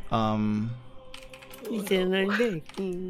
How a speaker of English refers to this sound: These are a lot of dice.